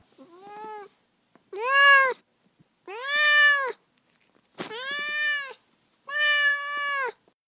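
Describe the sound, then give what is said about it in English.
A pet cat named Duarte meows five times in a row, fairly loud, each meow a drawn-out harmonic cry separated by brief pauses, with no one speaking. “we'll just move on to Duarte's corner, where my cat Duarte will share his opinion on the book.”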